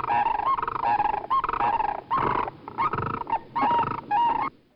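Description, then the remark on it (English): Sandhill cranes, a species of large crane, call while flying in a mixed jumble in a loud, overlapping chorus of rolling, rattling trumpet notes, several birds yodeling and bugling together in repeated bursts with no talking. “In contrast to the familiar flying V of Canada geese, sandhill cranes fly in a mixed jumble, yodeling and trumpeting.”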